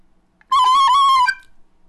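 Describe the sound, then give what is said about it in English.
A Yamaha recorder plays a short, breathy phrase in a Mr. Rogers cadence, a few high, steady notes with a slight dip in pitch midway, sounding alone for under a second before stopping. “So I take that Mr. Rogers cadence on the penny whistle to mean that you're doing great. That's obviously a Yamaha recorder.”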